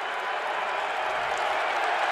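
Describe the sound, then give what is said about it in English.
A large basketball arena crowd comes to its feet, cheering and applauding in a dense, steady roar that holds at full volume for the whole stretch, with no clear voices standing out, late in a Jazz–Celtics game with 1:45 to play. “Crowd comes to their feet.”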